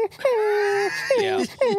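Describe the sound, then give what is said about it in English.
Three drawn-out, high whining cries, each sliding downward in pitch, fairly loud; it sounds like a voice imitating a cattle dog whining rather than a real dog. “Yeah, but maybe it's a whine.”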